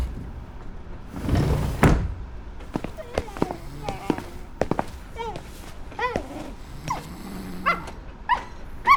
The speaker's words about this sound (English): You remember hearing some barking earlier in El Vagón de Segunda Clase.